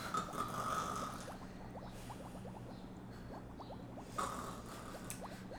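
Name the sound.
voice imitating snoring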